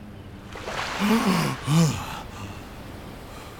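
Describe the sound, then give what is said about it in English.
Two sharp, breathy gasps for air in quick succession, fairly loud with a voiced, strained edge, followed by a soft airy hiss, as Maui breaks the surface of the ocean with his mouth wide open. “Maui suddenly broke the surface of the ocean, his mouth wide open as it gasped for the sweet air from the sky above.”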